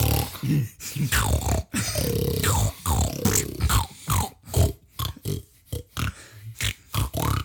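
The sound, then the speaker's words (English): Someone growls and grunts in a rough, throaty voice, imitating a Wookiee's call in a series of short bursts with brief pauses, some gurgling and rising in pitch. “You sound like you're doing a bear mating call.”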